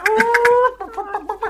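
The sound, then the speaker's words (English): A person imitates a chicken with their voice: a drawn-out, wavering squawk, followed by a quick run of choppy, rising clucks. “That's going to be a chicken noise, boy.”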